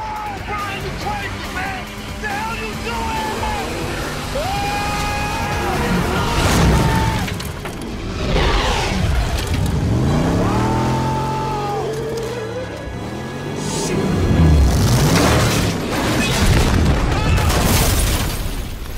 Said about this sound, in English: Culminates with Paul Walker and Tyree hitting a ramp, jumping, I would say, about 45 yards and landing into a yacht.